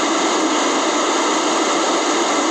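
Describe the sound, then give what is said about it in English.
A broken alarm clock giving off a loud, unbroken, harsh buzzing hiss, steady and unchanging throughout, with a faint high whine running through it and no voices. “There's some sound effects, courtesy of my broken alarm clock.”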